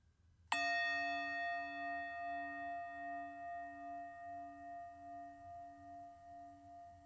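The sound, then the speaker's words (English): A single meditation bell is struck once, clear, then rings on with a long, slowly fading tone that gently wavers as it decays. No one speaks. “Here's the next bell.”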